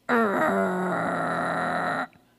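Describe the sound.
A voice imitates a snarling possum found under a grill cover, baring its pointy little teeth, with one loud, raspy hiss-growl lasting about two seconds, its pitch dropping early and then holding steady before it cuts off abruptly.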